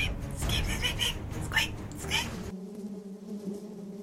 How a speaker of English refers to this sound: No. Not the bees. Not the bees!